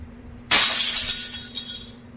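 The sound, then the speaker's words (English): Glass suddenly shatters with a loud, bright crash, followed by a couple of seconds of tinkling, clinking shards settling against a low steady hum. “Oh no, there's a glass in my spaghetti.”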